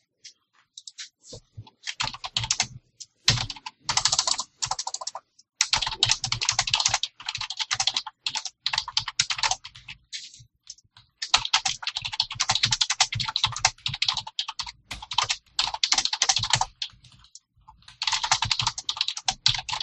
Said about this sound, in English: Your typing is amazing.